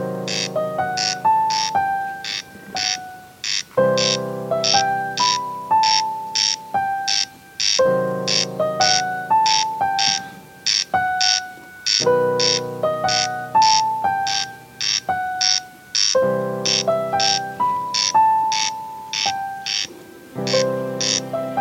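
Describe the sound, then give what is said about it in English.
A dry, rasping corncrake call repeats steadily in quick paired bursts, loud and unbroken, over a backdrop of sustained, shifting musical tones with no voices. “Hear the song of the little corncrake as he makes the earth all shiver and quake.”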